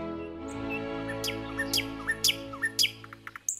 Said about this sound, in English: Like St. Francis, we're all familiar with the variety of sounds and melodies that flow from the birds of the sky